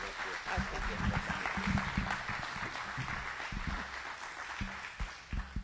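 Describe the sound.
A crowd at a church service claps steadily for several seconds, a dense, continuous patter of many hands, with a few scattered voices and murmurs underneath, welcoming guest pastors up to speak and minister.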